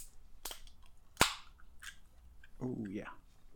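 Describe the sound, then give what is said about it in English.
A bottle of Rogue Dead Guy Ale is cracked open with two sharp, snappy pops, the second louder, followed by a short voiced murmur from someone. “I'm excited to crack this bad boy open.”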